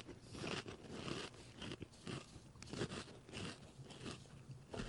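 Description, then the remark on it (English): Loud crunching as two stacked Pringles potato crisps of different flavors are bitten and chewed, with repeated crackly snaps in an uneven rhythm over about five seconds and no talking. “Well, they're definitely crunchy.”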